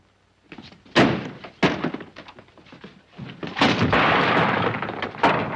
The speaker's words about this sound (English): Don't you dare slam that door!